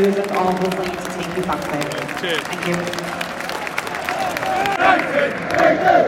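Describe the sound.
A football crowd in the away end at Anfield roars and chants steadily, a dense wash of many voices with bursts of clapping and shouts rising and falling, swelling louder toward the end.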